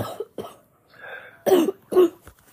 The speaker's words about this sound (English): Also, if y'all hear me coughing, I'm kind of sick.